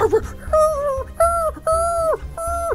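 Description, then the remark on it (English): A human voice imitates a dog's yelping whimper: four high, drawn-out whining cries in quick succession, each ending in a falling yelp, fairly loud, with no other talking, standing for guard dogs that start barking at something. “At this point, those lantern lights that you can see in the guards and the dog, all the dogs start barking at something. And yeah. it starts off as a bark, but then it's quickly like...”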